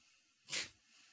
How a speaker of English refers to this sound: He can't even do this show and open a can of Coke at the same time without getting it all over him and jizzed in his face.